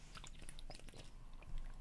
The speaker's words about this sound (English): Crystal Light. Yeah, you heard me sip. He's a guzzler.